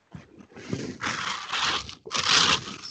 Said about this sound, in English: Jesus, someone's phones sound like they're being grinded to dust. No, that was a bag of chips.